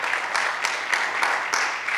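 An audience at Villas Grace Church applauds steadily after a solo performance, a dense, even wash of many hands clapping with a few sharper claps popping out, holding at a constant moderate loudness throughout with no talking.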